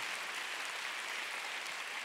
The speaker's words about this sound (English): Come on, let's give God a big hand. Hallelujah. Amen. Oh, you want to clap? Let's give the Lord a big clap.